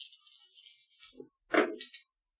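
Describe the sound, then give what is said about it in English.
A bright, clattering rattle of three dice shaken for a resources roll in a game for over a second, then a short burst of them tumbling and knocking onto a surface before stopping, landing a pair of ones. “Why don't you give me a resources roll? All right. All of three dice.”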